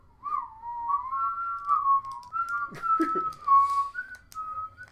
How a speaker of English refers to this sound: whistle about Zelda. Because we're nervous.